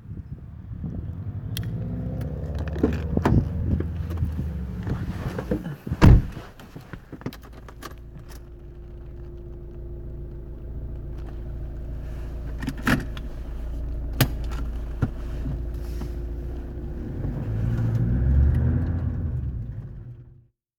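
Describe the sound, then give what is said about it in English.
A car engine rumbles steadily, idling and shifting as the car pulls up at a home, with sharp clunks and a brief jangle like a door and keys. No voices are heard. “Bee's at my place. Or at least, that's her car.”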